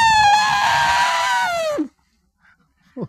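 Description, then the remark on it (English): A voice imitates an elephant trumpeting: one long, loud, brassy blast of nearly two seconds that holds steady, then slides sharply down in pitch before cutting off, followed by a faint breath. “That's what an elephant sounds like.”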